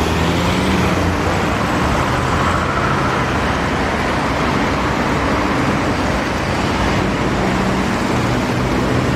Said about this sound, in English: It's Sleep Noise City Sounds